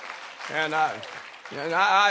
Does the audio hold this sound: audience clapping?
yes